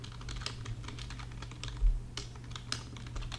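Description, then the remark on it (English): Rapid, irregular clicking of keys on a computer keyboard as someone looks something up, fairly quiet, with a steady low electrical hum underneath and no voices. “Sorry for the typing.”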